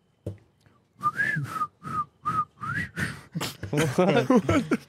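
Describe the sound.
A person whistles a short melodic movie theme tune for others to guess, in several sustained, gliding phrases, clear, followed by people talking and laughing over the end.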